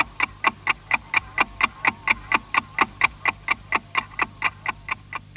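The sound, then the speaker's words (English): A steady, evenly spaced ticking like a mechanical clock, about four ticks per second, crisp, with a faint low hum underneath and no voices; the ticking clock identification signal of Austrian public broadcasting by RAVAG (Radio Traffic Company), used from 1924 until 1938. “The good old ticking clock, which was used between 1924, when public broadcasting started in Austria by RAVAG, short for the Radio Traffic Company, up until 1938”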